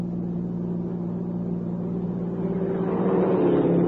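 A steady car engine drone from a car pulling out from the Echo Cave Lodge road rumbles continuously, low and humming, growing slightly louder and busier toward the end as it picks up speed. No one speaks.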